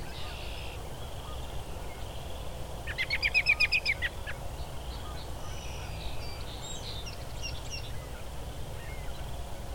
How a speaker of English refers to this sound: This robin's not singing, it's just making a lot of calls. Vocalizations.